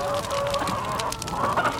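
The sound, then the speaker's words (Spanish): Agitated birds squawking and clucking continuously, a dense, noisy flock with overlapping harsh calls and no pauses. “las aves están realmente molestas.”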